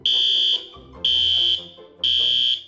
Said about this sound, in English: Someone triggered the alarm. There must be an intruder or...